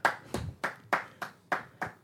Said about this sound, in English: So give yourself a hand clap and say holla.